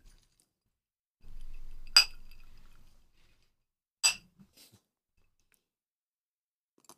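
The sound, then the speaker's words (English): Glasses of a bourbon Manhattan-style cocktail clink together in a toast: two bright clinks about two seconds apart, with a low rumble under the first and a few faint taps after the second. “Cheers.”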